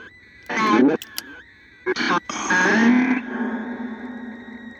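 Muffled, garbled vocal bursts drenched in heavy reverb from a device with its reverb switched on, with a long ringing echo tail that lingers and slowly fades after the last burst, giving a hollow, cavernous sound.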